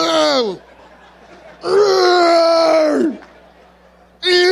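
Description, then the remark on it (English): A human voice imitating a whale call: three loud, drawn-out groaning wails with sliding pitch, the middle one longest, separated by brief quiet gaps. “That whale call.”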